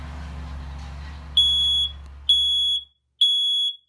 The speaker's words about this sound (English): So you hear the smoke alarm going off.